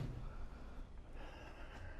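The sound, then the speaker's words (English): A single long, deep breath drawn in through the nose, a soft, airy hiss that holds steady for about two seconds, quiet with no talking. “Just taking one inhalation and like really knowing that you're taking it and feeling it, fill up your lungs.”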